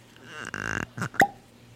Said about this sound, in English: I love the cork pop. That's one thing they got going for them.